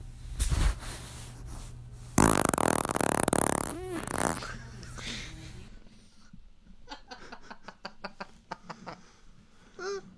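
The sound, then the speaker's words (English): A loud, drawn-out fart, the third in a series, with a raspy, sputtering texture, followed by a few shorter puffs and faint breathy sounds, with no one talking. “Fart number three coming down the pipeline.”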